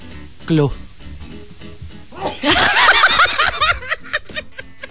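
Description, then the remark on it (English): A short voiced intake of breath, then a loud, sudden sneeze with a bright, hissy burst that trails off into a few softer breathy sounds. “I had no idea, you were just about to sneeze.”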